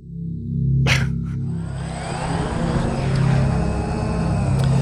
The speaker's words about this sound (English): As helicopters fill the skies, New Yorkers just want some peace. So I was thinking, I read this article about helicopters and all the noise that they're making. And I said, you think that the helicopter noise is bad?